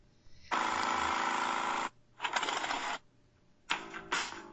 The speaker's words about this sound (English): Sorry. That's Janitor John Janitor's motorcycle. You live with Janitor down here? Yeah, I told you that before. He's my roommate.